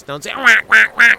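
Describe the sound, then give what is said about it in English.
A person's voice imitates a duck sneezing: one rising honk, then three short, nasal, quack-like bursts in quick even succession, fairly loud. “That's just a duck sneeze.”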